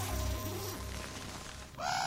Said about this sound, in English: Is that a crow? Pretty sure it is, yeah. You think it's Crowley?